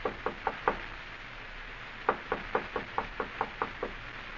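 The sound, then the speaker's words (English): A visitor raps on a door four times in quick succession, then after a short pause comes a longer, steady run of about eight more firm knocks, with no voices. “You'd better answer the door, my friend. Our visitor is here.”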